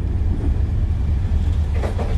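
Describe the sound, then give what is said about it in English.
A passenger train on the Dublin to Belfast journey runs along the rails with a steady, heavy low rumble, continuous, and a short burst of rattling near the end. No one speaks. “There's a different feel about the Dublin to Belfast journey. It's almost like it's a different train.”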